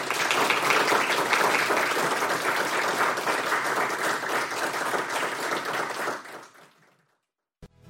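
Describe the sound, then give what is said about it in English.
An audience bursts into sustained, dense applause for a panel of speakers, steady and loud for about six seconds before fading out quickly, followed by a brief click near the end. “Let's give them a great round of applause for their dedication and their leadership, and they continue.”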